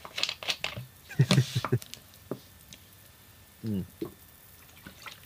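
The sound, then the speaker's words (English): A water bottle is cracked open: a quick series of sharp plastic crackles and crunches, followed by a short murmured vocal sound and faint handling noises. “I'll crack open my water.”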